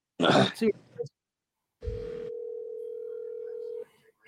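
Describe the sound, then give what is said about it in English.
A short burst of muffled noise, then a single steady ringback tone on a phone line during an outgoing call hums clearly for about two seconds before cutting off, fairly loud. “I'm going to call the comrade right now.”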